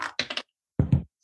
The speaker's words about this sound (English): So let's grab our dice. I want to roll initiative really quickly before we move on, okay?